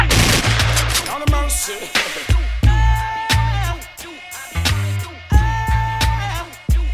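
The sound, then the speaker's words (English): Loud, sharp gunshots crack out in irregular bursts over a booming bass beat and sustained synth tones, the shots landing punchy throughout, with no one speaking. “Gunshot fire make some boy scream like a girl sound.”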